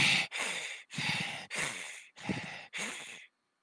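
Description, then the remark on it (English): A voice imitates heavy breathing: six loud, raspy breaths in a steady rhythm, each with a brief pause between, ending in silence. “So you just hear his heavy breathing.”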